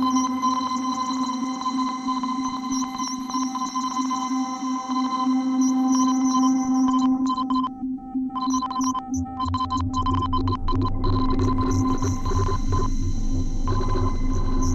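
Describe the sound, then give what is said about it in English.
A modular synthesizer feedback patch drones with sustained, pinging electronic tones in heavy reverb: diode chaos modulates the feedback, a Pico R&D's sine out and sample and hold modulate the color, and a Dismodus Versio's tone is modulated. It thins out briefly midway, then a deep rumbling low end swells underneath. No one speaks. “the diode chaos modulating the feedback, I'm actually using the sine out of the Pico R&D. The sample and hold of the Pico R&D is modulating the color, and then I'm using that extra out from the diode chaos to modulate the tone on the Dismodus Versio.”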